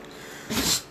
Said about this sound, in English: It was a big snot for a dog. My dog just sneezed on me.